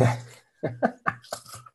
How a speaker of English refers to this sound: This episode is just going to be crunch. That's all it's going to be. It's us eating.